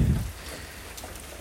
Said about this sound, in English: It's kind of raining up here, and I'm sitting out on the front porch and listening to the thunder and watch the lightning go through as this thunderstorm rumbles by.